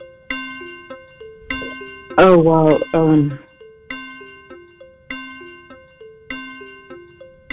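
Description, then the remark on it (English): A game show countdown clock with 15 seconds on it ticks along in steady, repeating bursts of bright electronic tones, loud, with a person briefly speaking over it partway through. “15 seconds on the clock.”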